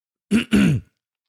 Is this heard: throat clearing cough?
yes